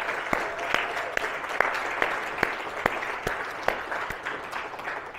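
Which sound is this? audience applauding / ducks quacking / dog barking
audience applauding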